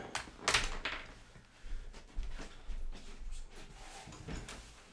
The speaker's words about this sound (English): Cat, stop scratching at the door. Stop it. Stop it. Excuse me whilst I go let the cat in.